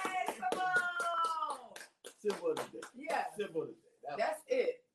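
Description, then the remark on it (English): A short burst of quick, rhythmic hand clapping rings out over a sustained cheering voice, then gives way to people talking with a few scattered claps. “Let's clap”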